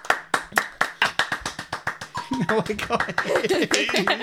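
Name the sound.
clapping and cheering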